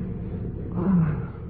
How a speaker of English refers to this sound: Oh, started to thunder.